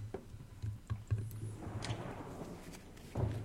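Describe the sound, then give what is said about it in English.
A sliding door leading from a kitchen to the outside rumbles open along its track, with a few light knocks and clicks, then slides shut again with a soft thud, set against a low steady hum. “He opened his sliding door to the outside of his kitchen.”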